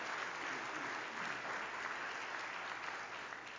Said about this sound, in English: Well, we are extremely thankful for our graduates here today, and thankful for you for taking the time out. Yeah, thank you. So let's give our graduates another round of applause.